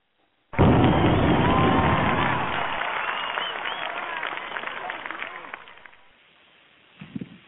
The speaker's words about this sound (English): All right. What did you say? Man, did we get it right this time? We got the clap right on time. Oh, wow.